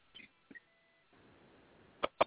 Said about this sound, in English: Yeah, that phone is still a little chopped. It may seem as if you're out of range as the signal is not as strong as it was a few minutes ago.